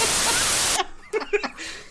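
A loud, flat burst of hissing white noise fills the first three-quarters of a second, then cuts off abruptly, followed by a few brief vocal fragments.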